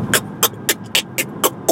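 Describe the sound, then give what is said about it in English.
A voice beatboxes a snare drum with seven sharp, hissy mouth bursts in a steady rhythm, fairly loud, with no other sounds around them. “Same with the snare.”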